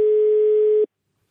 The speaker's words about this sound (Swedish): Kan inte du ta och ringa honom? Jag ringer honom.